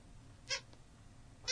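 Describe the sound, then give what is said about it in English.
A pet dog, not a dog toy, gives two short, high-pitched squeaks about a second apart. Each is a brief whiny chirp that stands out against an otherwise quiet, low hum with no talking. “By the way, that squeaking's my dog, in case you guys can hear that.”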